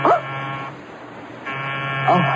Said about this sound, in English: Oh, it's just the doorbell. I'll go see who it is and send him away,